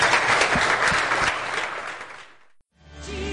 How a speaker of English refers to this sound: Come on, can we give God just some applause this morning?